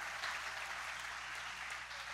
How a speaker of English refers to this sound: Let me tell you, white people are learning how to clap at Victory Church. Go ahead, give yourselves a hand.